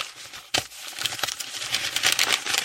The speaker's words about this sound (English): But the beautiful sound of leaves rustling goes through, and they're actually throwing leaves around, and then using giant piece of paper to blow them. They're making a rustling sound